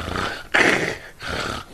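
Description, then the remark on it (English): A voice imitates the gasping snore of a man sleeping in a car while driving along: three raspy, breathy rattles in a row, the middle one loudest and harshest, with short pauses between them and no talking. “He's sleeping, but he's snoring. He's like gasping for breath.”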